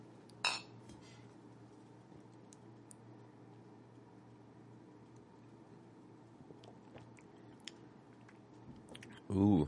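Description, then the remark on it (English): Glasses of milk stout beer clink together once in a quick, bright toast near the start, followed by quiet murmur and a louder clunk at the end, like a glass set down on a table. “You want to cheers? Cheers.”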